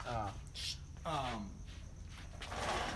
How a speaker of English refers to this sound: You always need a dog bark in there. There's always a dog bark at some point in the episode.